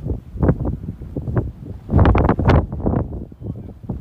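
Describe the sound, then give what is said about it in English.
Storm wind whistling and buffeting in loud, uneven gusts that surge and fade, with the strongest blast midway through and rough rumbling underneath. “It really does sound like a whistle.”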